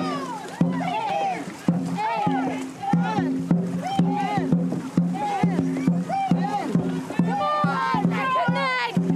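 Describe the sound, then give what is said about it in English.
Two rowing boats racing on the water, just put in for the first time, with sharp, irregular oar strokes and splashes nearly buried under a crowd of excited voices calling and chattering. “Well, we've just put the boats in the water for the first time.”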